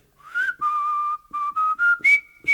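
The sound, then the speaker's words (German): A parrot whistles the River Kwai March: about seven clear, sustained notes in a bouncy rhythm, stepping up in pitch toward the end, with no talking over it. “Er hat ein Konzert veranstaltet, hat nämlich den River Kwai Marsch gepfiffen.”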